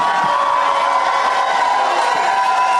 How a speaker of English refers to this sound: Are you booing the Seahawks?